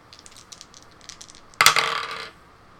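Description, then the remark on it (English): Dice rattle and click lightly for a moment, then clatter loudly across a hard tabletop in a brief, bright tumble before settling into silence, one die showing a two. No voices are heard. “Well, the two on the dice is not going to hit.”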